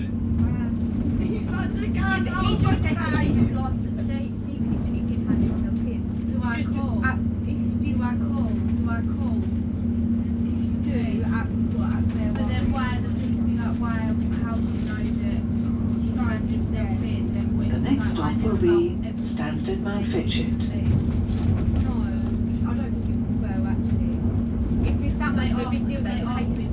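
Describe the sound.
Steady low rumble and drone of a moving train carriage on a service to Cambridge North, with a constant engine hum underneath and indistinct voices murmuring throughout the ride.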